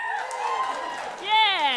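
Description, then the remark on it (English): A crowd of voices in a live show audience cheers and whoops for under two seconds after being asked to applaud if they have never heard the show before, swelling into a louder, higher-pitched shout toward the end, with no distinct clapping standing out. “That was an excited cheer.”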